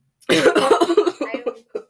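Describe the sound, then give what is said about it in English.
A rapid fit of harsh coughing after inhaling dust: about eight hacking bursts in quick succession, loud at first and then trailing off into a final cough after a short pause. “Every breeze I make, I have to cough.”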